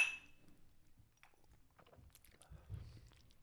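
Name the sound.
glasses clinking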